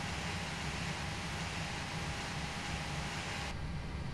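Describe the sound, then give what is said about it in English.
A Boeing 737 jet engine in a flight simulator, heard from the cockpit view during an engine shutdown procedure, roars steadily, a dense rumbling hiss with a thin high whine and a faint mid tone; near the end the bright upper hiss suddenly drops away. “So we're going to do one engine, you know, from this view right here, and then one from the outside so you can hear.”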